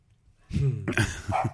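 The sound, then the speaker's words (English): A dog named Luna barks, two or three short, rough barks in quick succession with a slightly hoarse, throaty edge, heard alone without talking. “She barked, we'd be fucked.”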